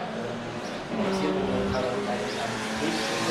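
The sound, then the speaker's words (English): A Volkswagen Golf drives past on a race track, its engine swelling into a steady, moderately loud roar with a tonal hum that carries on as it goes by. “That was a Golf. It wasn't so impressive.”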